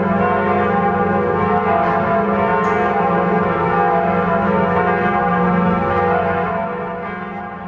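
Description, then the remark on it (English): The large bells of Notre Dame Cathedral ring continuously in a dense, overlapping peal, their deep resonant tones sustained and loud throughout before fading slightly at the end. No voices are present. “Silenced at least for now, but apparently to ring again the iconic Notre Dame Cathedral bells.”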